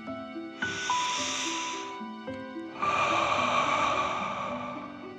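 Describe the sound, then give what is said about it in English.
A deep breath: a hissing inhale through the nose lasting over a second, a brief pause, then a longer, forceful whooshing exhale through the mouth, with soft sustained music tones underneath. “Deep breath in and out.”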